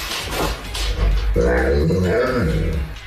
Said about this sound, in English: This owner is about to leave the house, and her dog says, "Where are you going?" See if you can hear it.